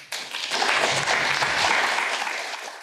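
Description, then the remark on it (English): A crowd breaks into steady, sustained applause, many hands clapping together in a dense wash of sound that holds strong for a few seconds before easing slightly. “We've got a decent round of applause for that.”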